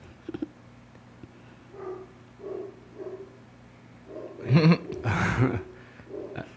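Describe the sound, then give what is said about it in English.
Dogs bark in a few short, scattered bursts, starting softer and growing into a louder cluster of overlapping yelps near the end, over a steady low background hum. “Annoying dogs as always.”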